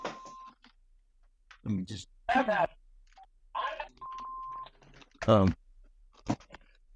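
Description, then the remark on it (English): A phone rings with two brief, steady electronic tones, separated by a few seconds, while a person talks in short bursts around them at moderate volume. “and my phone ringing here.”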